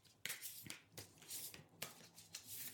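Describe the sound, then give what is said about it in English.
Steady riffling of a deck of tarot cards being shuffled, with soft papery flicks and a few sharper snaps repeating every half second or so, no voices. “I'm shuffling cards right now.”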